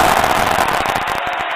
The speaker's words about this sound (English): Wow, the crowd goes wild